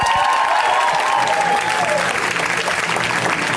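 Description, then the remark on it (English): Sustained audience applause for a comedian, a dense, steady clatter of many hands clapping at full volume for several seconds, with a faint high whistle near the start and no voices. “Keep it going for”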